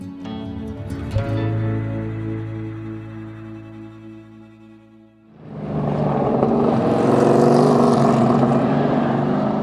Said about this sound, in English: The smell of exhaust dominates the air as race car drivers hit the track in waves. Dozens more are set up at their stations, pit crews on hand. They're all practicing for tomorrow's race day. I'm at the Madeira Speedway on this Friday afternoon